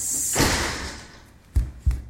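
A front door bursts open with a rushing whoosh, followed by two heavy thuds in quick succession as it bangs against something.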